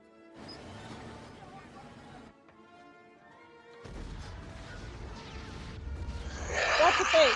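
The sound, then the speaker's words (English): A movie-style explosion sequence with Nazi dummies flying up into the blast: a rumbling blast, a brief quieter musical lull, then a second, heavier detonation that swells louder with crackling, hissing debris at the end. “I love watching Nazi dummies fly up to the top of an explosion.”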